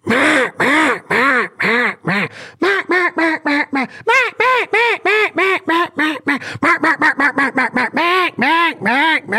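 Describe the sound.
A rapid, continuous series of loud, nasal hen mallard quacks blown on a duck call with varying airflow, rising and falling in cadence with brief gaps between bursts, clear with no talking.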